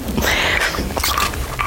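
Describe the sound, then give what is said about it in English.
A preacher takes a drink of water, with wet slurping and swallowing noises in a short burst of mouth sounds and no talking. “Gosh, get a little water.”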